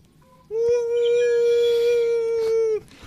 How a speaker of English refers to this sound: Hey guys, you're listening to the ASMR of the ocean. Here's a whale.